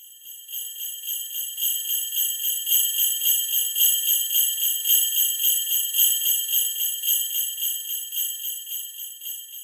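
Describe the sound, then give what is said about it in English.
Sleigh bells jingle in a steady, rhythmic shake for the whole stretch, bright, with bouncy pulses and no voices over them. “Hope you all enjoyed the sleigh bells.”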